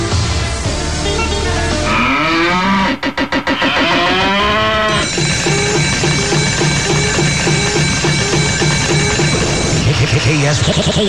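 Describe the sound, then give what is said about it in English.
A cow lets out a loud, drawn-out moo as a sound effect, its pitch sliding and wavering, set against busy music and other effects in a radio-style mix; the cash cow moo of a cash cow contest promo for Denver radio station KS107.5. “The KS107.5 cash cow is giving away $100 an hour every time you hear the cash cow moo.”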